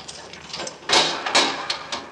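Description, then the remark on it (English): A key rattles and clicks in a Yale lock, followed by a morgue door being pushed open with a short scraping rush of sound, fairly loud, with no voices. “This is the only door in town with a Yale lock on it.”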